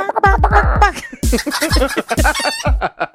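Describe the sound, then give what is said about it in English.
Several chickens cluck loudly and excitedly in quick, overlapping bursts, with sharp squawks and a brief crowing-like call mixed in, with no talking. “throw some chicken celebrating somehow in here.”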